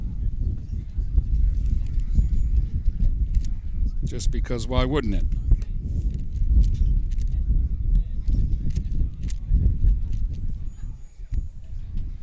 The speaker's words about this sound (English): And some more wind is going to gust through here.